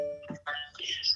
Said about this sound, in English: Uh-oh. This is the computer sending me a notification. That's fine.